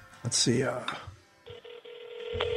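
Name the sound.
telephone dialing a call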